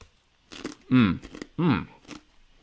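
Crunching and chewing of fried plantain slices (tostones), a few brittle crackles scattered across the moment, broken by two loud, drawn-out voiced murmurs from the person eating.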